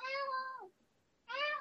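A male cat meows twice while being offered Dental Life treats: a long, steady meow that slides downward at the end, then a short pause before a second meow begins. Both are fairly loud, with no talking.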